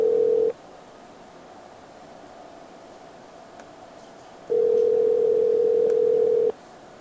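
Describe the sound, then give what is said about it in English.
A steady, mid-pitched telephone tone cuts off after half a second, then a long quiet hiss, then the same flat tone returns loudly for about two seconds. No one speaks. “Beep, boop, beep, boop, beep, boop, beep, bop, bop, bop.”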